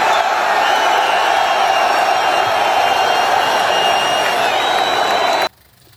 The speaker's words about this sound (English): You would think he just won the biggest fight ever by the cheers, the claps, the ovation. The Donald Trump.